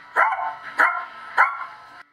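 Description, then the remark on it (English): A person learning to imitate a dog gives three short, hesitant, too-low barks spaced about half a second apart, moderately loud, with no other talking. “I try the bark, but I'm not quite getting it.”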